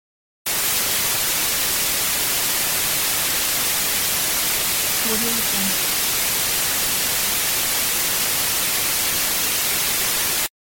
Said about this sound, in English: I'm about to play a little bit of white noise for you. If you can, turn the volume up and stay in that position. If you are sensitive at all to white noise for any reason, please skip ahead 10 seconds.